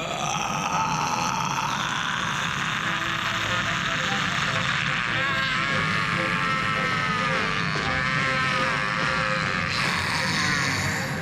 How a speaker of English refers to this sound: And I timed out that scream. It is almost 12 seconds. It is 11 and change long. So that is an 11 plus second scream.